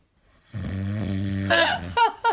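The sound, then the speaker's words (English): A loud, deep, rhythmic human snore with a low rumbling drone that breaks into a harsher, rasping gasp, followed by another rough intake, with no talking. “That's a nice snore. At least it's got a rhythm to it.”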